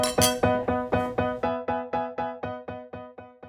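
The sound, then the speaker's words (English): A rapid, evenly spaced run of bright ringing clinks of glasses tapped together in a toast, about a dozen strikes in quick succession with a resonant tone, loud with no voices. “Cheers. Cheers. Cheers.”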